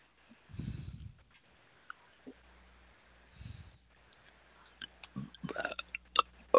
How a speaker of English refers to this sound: Excuse me, I am so sorry. I'm belching like nuts tonight.